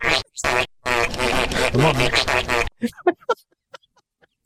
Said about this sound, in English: It'd be a goat making fart noises, man.